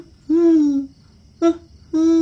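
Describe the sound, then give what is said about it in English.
A big brown owl with a yellow beak, sitting on a tree branch outside a bedroom window, hoots three times: a long, steady low hoot followed by two shorter ones after a pause, clear and alone over a faint background hush. “A new noise came from outside. Is that a ghost? Onke shone his torch through the window. A big, brown, feathered thing with a yellow beak sat on the branch outside.”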